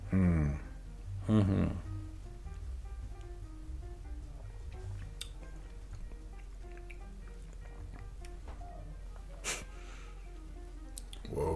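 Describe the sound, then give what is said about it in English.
Sipping tea: a couple of short slurping sips at the start, followed by a quiet stretch with a low hum, faint clicks and one more brief airy slurp near the end. “Yeah, we just went in for some sips.”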